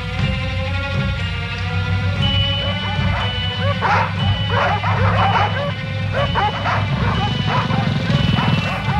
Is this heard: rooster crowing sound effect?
no